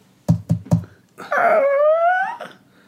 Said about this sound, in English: I want you to rap Greyface's door.